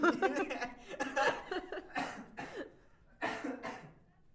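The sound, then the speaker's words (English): Several harsh coughs come in quick bursts, broken by short pauses, with some laughter-like huffs mixed in between the coughing fits. “Sorry, I have a cough today.”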